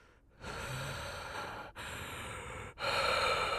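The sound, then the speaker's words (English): Heavy breathing: three long, loud, noisy breaths follow one another with short pauses between them, the last the strongest. No one speaks. “heavy breathing.”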